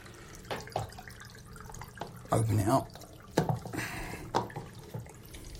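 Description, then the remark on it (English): Soapy, sudsy water sloshes and drips inside a lidded container as it is inverted, with splashy bursts and small trickles around a louder swirl midway, while a person speaks briefly. “leave the water in there, obviously, and just see what we've ended up with.”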